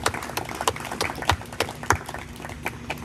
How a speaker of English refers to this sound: And so let's give them a round of applause.